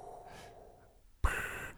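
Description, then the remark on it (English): A voice imitates Darth Vader's mechanical respirator breathing: a soft, drawn-in breath followed by a loud, harsh, hissing exhale, with no talking. “Now do the breathing.”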